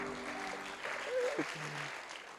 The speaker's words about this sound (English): I want to thank the band. Haven't they done a great job tonight? Yeah? Let's give them a clap. Oh, come on, you can do better than that.